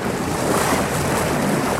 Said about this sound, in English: The waves crash on the side of the boat, and I can only imagine how hard it is for women and older people to climb up.